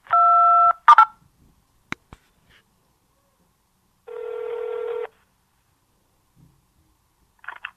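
A steady telephone keypad tone sounds once for about half a second as a caller presses 2 for returns in a Home Depot automated phone menu, followed by a few sharp clicks, then a lower, buzzing phone tone about a second long, with no talking.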